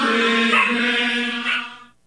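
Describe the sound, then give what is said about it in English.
A dog gives a loud, drawn-out, tonal howl lasting about two seconds, rising slightly in pitch twice before trailing off, with no talking. “The dog doesn't like it either. No, he wants to participate. Yeah, maybe he's singing along.”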